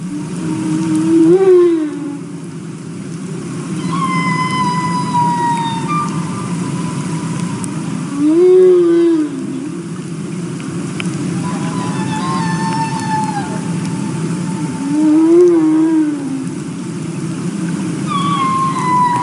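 Humpback whale song recorded underwater in Glacier Bay National Park, a recording provided by the National Park Service: three loud, moaning low calls about seven seconds apart, with higher descending whistles and squeals between them over a steady rumbling background.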